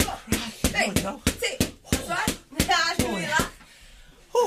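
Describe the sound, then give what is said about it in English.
A rapid series of sharp boxing punches lands, about a dozen smacking hits in quick uneven rhythm, with breathy voices and grunts sounding between the blows. “There's a few ecklers there in my mind, just as I was punching.”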